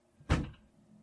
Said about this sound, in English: Can you shut the door behind you? Why? Because I'm recording and I don't want to make too much noise.